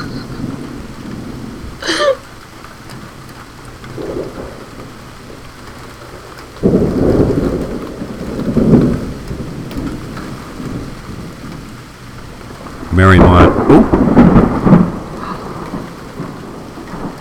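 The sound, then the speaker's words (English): Steady rain hisses throughout while thunder rolls in low, rumbling swells, with a sharp crack early on and a louder, crackling peal near the end. No one speaks. “I just told you I was going to sit back away from the mic and enjoy the rain?”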